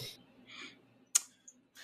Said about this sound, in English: what are you clicking right now?